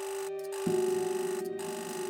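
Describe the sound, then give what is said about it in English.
A steady electric tone hums, then a harsh switchboard buzzer cuts in, signaling that a guest room's phone has been pulled off the receiver, and keeps droning loudly and continuously to the end, with no one speaking. “A buzzer sounded from the board.”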